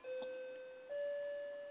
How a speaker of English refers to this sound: Your doorbell, man? No, that's my clock. You know, a clock has a chime on it.